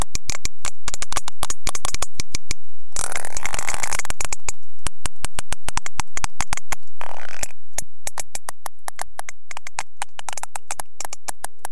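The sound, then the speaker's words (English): Sperm whale families socializing off the coast of Dominica, bodies touching and rolling around, trading dense overlapping trains of sharp, loud clicks in rapid rhythmic codas, broken by brief rushing bursts of noise, with faint low tones appearing toward the end. “When families come together and socialize, where their bodies are touching and they're rolling around, and they often will sort of open their mouths and run their teeth along each other's bodies”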